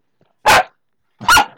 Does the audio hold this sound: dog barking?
yes